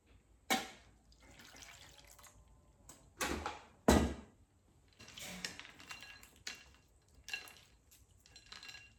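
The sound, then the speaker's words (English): Water runs and splashes into a bowl, filling it with ice water for soaking thin slices, broken by several sharp clinks and knocks of dishware, with no one talking. “And then pop that into a bowl with ice water and let that soak for about 5 to 10 minutes. There's my water, there it is.”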